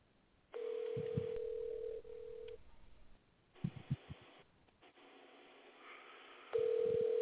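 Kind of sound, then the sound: signal or alarm, telephone number being dialed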